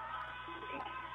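A phone ringtone plays a tinny, band-limited snippet of pop music with a sung vocal line, steady and moderately loud for about a second.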